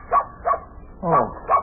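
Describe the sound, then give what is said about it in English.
A dog named Bunny barks and yips in four quick bursts, the third one longer with a whining tone, all standing alone without talk. “Oh, it's only your dog, Bunny.”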